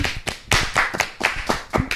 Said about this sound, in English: We just hit big 5 bands on YouTube. Big 5K in the building. So everybody, let's go ahead and clap it up.